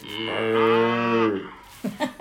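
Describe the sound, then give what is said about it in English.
A cow moo sound effect: a single long, loud moo with a rich, droning tone rises and sustains for over a second before fading, followed by a few brief, soft bursts of sound. “Should I see if I've got a little cow sound?”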